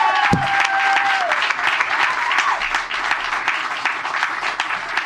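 A crowd claps steadily in sustained, dense applause for the full five seconds, loud and even throughout, with a brief whistle-like tone near the start and no one speaking.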